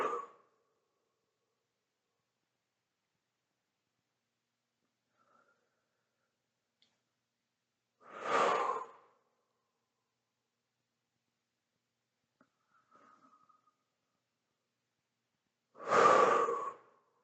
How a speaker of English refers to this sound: Let's do 30 seconds where we're just simply breathing. You can feel your feet on the ground or your hands on the ground. Just be, just breathe, and just think of nothing else than your breathing. Focus on your breathing.